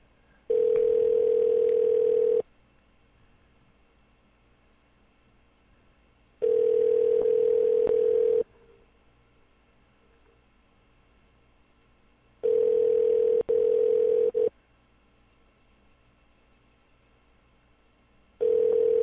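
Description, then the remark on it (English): A steady telephone ringback tone repeats in two-second bursts separated by about four seconds of quiet, sounding four times with no one picking up and no voices. “Never answering the phone for me.”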